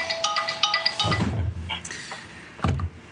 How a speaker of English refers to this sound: So I'll just turn that mobile phone off.